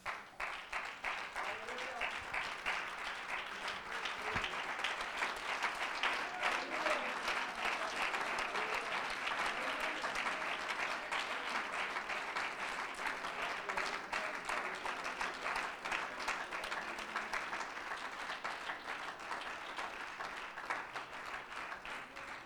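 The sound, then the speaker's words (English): A large audience, standing, claps steadily for over twenty seconds as a hand clap of praise to God, a dense, sustained wash of applause with a few voices faintly mixed in. “You want to plug in or stay plugged in, why don't you stand to your feet and just give God a hand clap of praise.”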